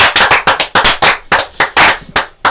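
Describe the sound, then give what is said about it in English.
A small group in a garden claps by hand for the man who brought the ale they are about to drink, a quick, uneven burst of sharp, loud smacks lasting a couple of seconds with no talking. “Let's have a clap”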